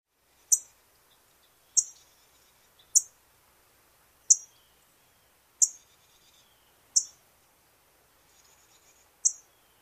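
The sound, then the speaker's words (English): An orange-crowned warbler gives seven sharp, high-pitched chip calls, each a brief clean snap spaced roughly a second apart, clear against a quiet background with no talking. “The orange-crowned warbler call is a simple, sharp, high-pitched chip.”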